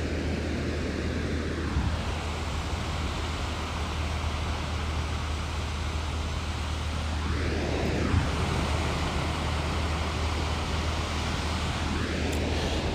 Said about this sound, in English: Dig those beach sounds, those waves. So it's been a while since I've been to the beach.